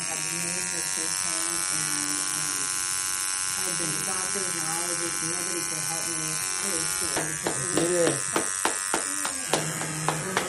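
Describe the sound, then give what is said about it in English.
A homemade, prison-style tattoo machine made from a toothbrush and fishing string buzzes steadily, a high, whiny motor drone running throughout while people talk over it, with a quick run of sharp rhythmic clicks near the end. “Yo, it's kind of like easy to tattoo.”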